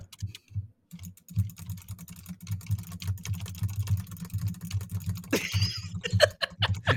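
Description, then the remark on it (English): Rapid, frantic clattering of computer keyboard keys being pushed, dense irregular clicks with a brief brighter burst near the end; no one speaks. “I hear the frantic pushing of the keys.”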